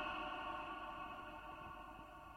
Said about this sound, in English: Wow, that's an echo.